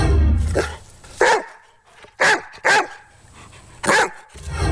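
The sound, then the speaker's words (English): A dog barks several times in short, sharp, loud bursts, with brief pauses between barks and some low rumbling in the background at the start. “Good luck, dog number five.”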